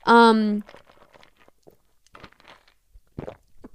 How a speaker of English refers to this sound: Oh my God, did you hear that? That was crazy. I put the mic like up to my swallowing muscles, my throat. What the fuck? I put the mic up to my throat, my swallowing muscles. That's crazy.